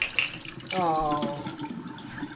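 Cold filtered water pours from a Brita filter pitcher taken from the refrigerator in a steady stream, with a gurgling tone that rises in pitch as the container fills over a couple of seconds.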